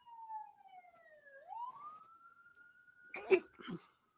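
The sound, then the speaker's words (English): An ambulance siren wails outside, its pitch sliding down and then sweeping back up in a steady tone, interrupted near the end by two short, loud sneezes. “The ambulance made me sneeze, apparently.”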